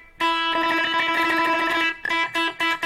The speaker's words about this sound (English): Very cool delay here. Let's change it up a little bit. So you can get a really slow delay, like a slapback.